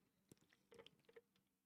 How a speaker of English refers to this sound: I got some Chick-fil-A lemonade here. Let me take a little sip of that.